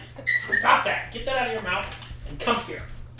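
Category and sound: animal, puppy whimpering and yipping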